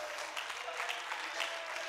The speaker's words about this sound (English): Oh, somebody clap your hands and shout it to the Lord tonight.